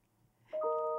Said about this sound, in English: The bell rings because we speak the truth. Uh-huh. And this is always true. And that is something you've always said too. Whenever that bell rings, the truth is being spoken.